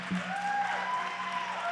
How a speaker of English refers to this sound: And let's give them, because they might be a little bit nervous. Come on, let's, a bigger clap.